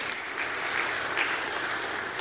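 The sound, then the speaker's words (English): An audience breaks into steady applause for a first-time father on Father's Day, a dense wash of many hands clapping at an even, moderately loud level with no voices heard over it. “Let's give a round of applause over here.”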